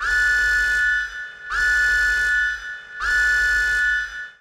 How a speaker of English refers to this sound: An alarm! Flashing lights!